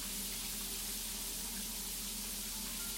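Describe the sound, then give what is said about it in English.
A tap runs steadily into a sink, a constant hissing rush of water that stays even throughout, moderately quiet, with no voices. “Oh, I thought the water only occasionally got rusty.”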